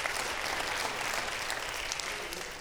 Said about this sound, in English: If you believe that, clap your hands unto the Lord and give God praise and thank him for the gospel of Jesus Christ.